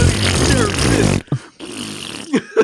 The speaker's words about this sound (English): Dude, for me, it's still the stupid farting diva.